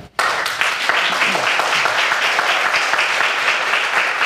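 An audience bursts into sustained applause, a dense wash of many hands clapping at steady loudness for several seconds, with faint whoops and voices mixed into the crowd noise.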